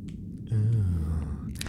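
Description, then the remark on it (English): A voice imitates soft wind, making a breathy, low, whooshing hum that swells after a brief quiet start and holds steadily for about a second before trailing off. “Starts off very soothing, some nice wind noises.”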